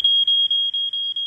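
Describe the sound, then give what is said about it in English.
A smoke alarm sounding a loud, shrill high-pitched tone in rapid repeating pulses, each with a brief break, with no voices. “Your cracker open so a smoke alarm don't go off again.”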